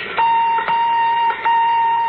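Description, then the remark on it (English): A radar sender, switched on as a crew prepares to land on Mars, hums with a steady, high electronic tone, broken by a few brief clicks and short dips in level, with no voices over it. “Switch on radar sender.”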